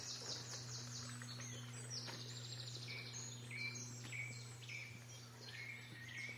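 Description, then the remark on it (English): Several songbirds, including blackcaps and a wren, sing at once in a lively outdoor chorus by a little stream, with rapid trilling phrases and bright warbling notes overlapping against a steady low hum. The song is continuous throughout. “Blackcaps, there's a wren.”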